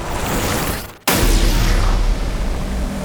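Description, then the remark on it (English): A giant particle beam fires from a huge cannon on the front of a ship and strikes its target: a humming rush cuts out briefly, then erupts into a loud, sustained roaring blast with a deep rumble and screeching, sweeping high tones that carry on for two seconds. “And there's just like a horrible screaming, screeching noise as this like giant particle beam just rips through the air and strikes the many bewheeled angel.”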